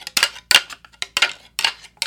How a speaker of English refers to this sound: So the hunter's out there trying to attract the whitetail, and they'll take two of these, like I have these two antlers I have, and they'll rattle them together like this.